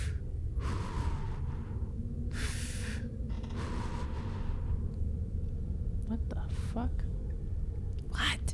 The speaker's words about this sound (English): What do you hear? There's like a heartbeat and heavy breathing. I think somebody's getting freaky in here.